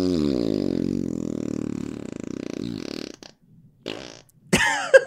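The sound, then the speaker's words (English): A long, low, buzzing fart rumbles steadily for about three seconds, then trails off into a few short sputters and a sharp squeaky finish, fairly loud. “Can I get the name of that fart just for reference?”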